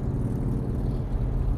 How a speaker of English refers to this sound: Sorry for the motorcycle.